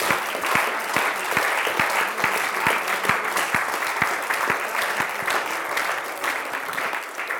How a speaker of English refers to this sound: Let's give a mighty big clap offering to Jesus.